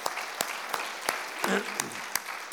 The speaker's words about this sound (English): Come on, give them a clap offering.